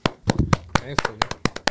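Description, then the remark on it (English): A single person claps about eight times in a steady, quick rhythm, each clap a sharp, crisp smack, with a brief bit of voice murmuring between the claps. “So, you know, round of applause.”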